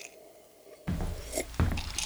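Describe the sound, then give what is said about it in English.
Two wet slurping sips of a cold gin drink with ice from a cup, one after a short pause and another about a second later, following a moment of near silence. “And I gotta sip it up.”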